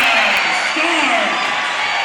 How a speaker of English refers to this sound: Crowd erupts.